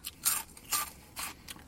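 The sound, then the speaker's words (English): Crunching of rice crackers wrapped in seaweed, several crisp bites in an uneven rhythm, each a short bright burst of crackling, with no voices. “They're rice crackers wrapped in seaweed. Man, these are good.”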